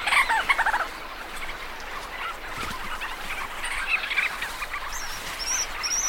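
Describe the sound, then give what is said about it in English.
A busy chorus of ancient murrelet calls, with overlapping chirps and trilling notes from many birds at once, loudest at the start and continuing steadily over a low background hiss. “Ancient Murrelet Migration”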